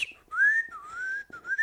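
A robot's whistling and beeping chirps in a quick warbling burst, the pitch sliding up, dipping and rising again with a brief break. It is fairly loud, with no talking.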